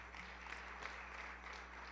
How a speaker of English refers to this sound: Come on and give God a hand clap of praise if you will.